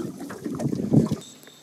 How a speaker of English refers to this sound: We're paddling across the lake, and we're the only people out here on it.